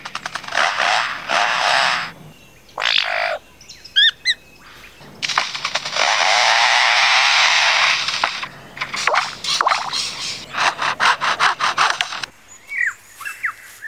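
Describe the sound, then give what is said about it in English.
A lyrebird mimics foresters' chainsaws cutting wood: loud, rasping buzzes that rev and hold for seconds, broken by short whistles, clicks and rapid stuttering bursts, with no talking. “And now the sounds of foresters and their chainsaws working nearby.”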